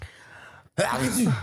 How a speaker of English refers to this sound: You got me sick, by the way. Don't sneeze on the fucking mic.